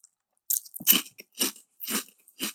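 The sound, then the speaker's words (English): Chewing of a soft, chewy cheese-and-tomato-flavored snack, four or five moist, crackly bites in a steady rhythm roughly every half second, with no one talking. “cheese and tomato sort of flavoring, but it's kind of soft, it's kind of chewy.”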